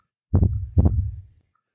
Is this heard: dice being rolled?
no